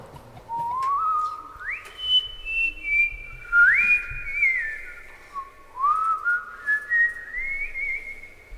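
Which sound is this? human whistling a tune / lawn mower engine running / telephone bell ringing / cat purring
human whistling a tune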